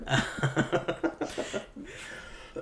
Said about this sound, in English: I'll cut that. If it's me, I'll cut that cough out, though.